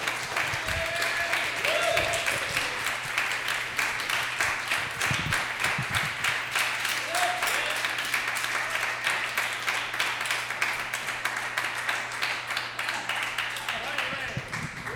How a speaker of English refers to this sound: Clap for him! That was hilarious.